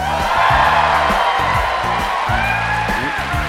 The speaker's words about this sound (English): We are on stage in front of a rowdy and large crowd at the Merle Reskin Theater on the campus of DePaul University in Chicago.